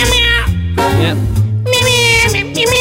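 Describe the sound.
A man sings in a drawn-out, wailing voice imitating a cat's meows, with harmonic sliding notes over a steady instrumental backing, loud.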